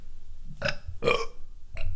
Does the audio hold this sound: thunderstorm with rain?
no